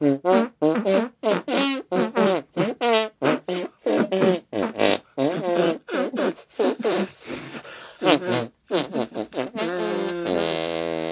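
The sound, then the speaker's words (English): A rapid string of wet, squelchy arm-fart noises made by a person, played as a song in a rhythmic melody with shifting pitches, loud, ending with a sustained buzzy tone. “We're going to arm fart away out of here.”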